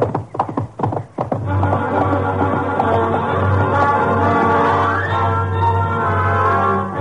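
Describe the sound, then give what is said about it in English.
A quick burst of horse hoofbeats clatters for about a second, then fades under a loud, sustained musical drone that fills the rest. “It was up to the horses, and I had the best.”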